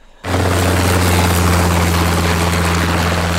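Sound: helicopter rotor sound effect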